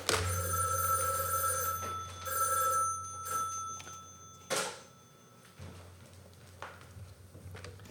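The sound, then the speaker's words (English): The mechanical bell of an old rotary telephone on an old line that has not been disconnected rings in two long bursts, loud, then a few shorter clanks and taps as it falls quiet, with a low hum underneath. “It's an old, scary, haunted rotary phone.”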